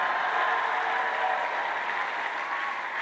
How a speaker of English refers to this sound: Can you give me a prophetic clap? Can you give me a clap of victory? Clap once, all ye people.